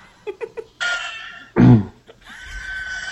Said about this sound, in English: That's a llama getting its teeth done.